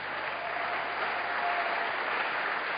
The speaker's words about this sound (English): I think you should appreciate God for a clap.